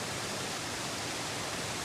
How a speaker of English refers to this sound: I'm sitting at the pool at the Marriott Hotel at the Dead Sea in Amman, Jordan.